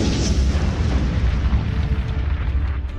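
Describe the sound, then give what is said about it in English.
A heavy explosion as the core of a monolith blows up, deep booming energy rolling without a break under a rough, crackling wash of flying dust and debris, loud from start to finish with no voices. “just as the core explodes with earth-shaking force, sending dust and debris flying out of the open sealed space.”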